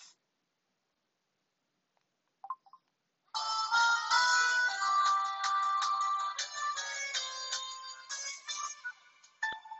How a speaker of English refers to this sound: By the way, guys, this is my most least favorite ringtone, and this one is my favorite.